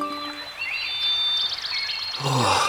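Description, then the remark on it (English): A steady wash of babbling water fills the background while bright bird chirps and a quick repeated trill ring out over it, a layered, continuous nature ambience with no voices. “Can I have a nice stream going through the room, please? Nice stream on. And some trees and Tweety birds.”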